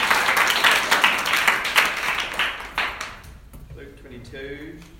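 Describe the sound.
An audience at a Bible reading claps in a short burst of applause for a person helping with the screen, a dense patter of many hands that fades out after about three seconds, then a voice begins speaking.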